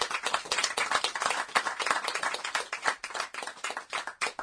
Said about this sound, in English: Please join me to give Jonathan Edwards a warm welcome, warm round of applause.